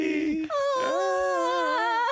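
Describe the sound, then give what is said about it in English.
A large, heavy female dog whimpers in one drawn-out, wavering whine, its pitch dipping at the start and then rising and holding. It is fairly loud, with no talking over it. “Yeah, I've got a heavy dog. She's a unit, mate.”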